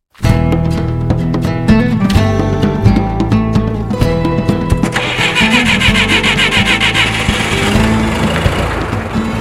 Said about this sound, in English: To capture air, Lamb and Paquette drive a truck towing a trailer full of empty tanks more than 4 hours south of Edmonton to Banff National Park.